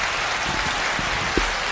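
A crowd applauds a reverend with a dense, steady wash of crackling claps that holds an even loudness throughout, with no individual claps standing out and no voices.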